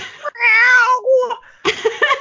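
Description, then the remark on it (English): A person's voice imitates an orange kitten's meow in a drawn-out, wavering, high-pitched cry, followed by a short breathy sound and another burst of voiced, playful vocalizing. “That's not really what he sounds like”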